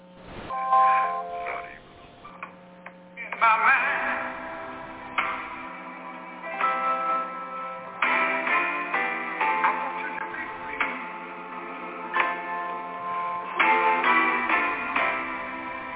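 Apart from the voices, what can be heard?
bells ringing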